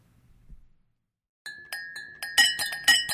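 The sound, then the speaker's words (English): Glasses clink together repeatedly after a short pause, bright ringing taps that grow louder and quicker toward the end, with no talking over them, as someone practices a holiday-season toast for Geronco customers. “why are you clinking glasses?”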